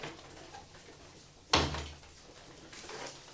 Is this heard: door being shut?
yes